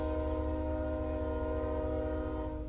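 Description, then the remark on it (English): A train horn blares in one long, steady, fairly loud blast over the low rumble of a train rolling past, fading slightly right at the end. No one speaks. “Shout out to the train.”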